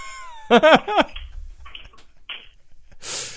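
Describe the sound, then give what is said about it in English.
A kitten meows in a quick, loud burst of three wavering, pitched cries, followed by quiet clicks and a brief breathy hiss near the end. “It's a cat.”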